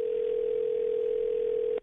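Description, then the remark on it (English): A steady, unbroken telephone dial tone hums at an even level for nearly two seconds as radio hosts at New Country 103.1 place a call, then cuts off abruptly. No voices are present. “Let's get Aunt Colleen on the phone here.”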